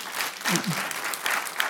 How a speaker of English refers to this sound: Let's give everyone a round of applause up here.